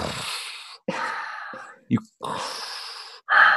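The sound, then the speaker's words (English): A person imitates Darth Vader's mechanical respirator breathing, making four slow, breathy in-and-out rasps with short pauses between them. “Think about the breathing. Just close your eyes, and you can hear the.”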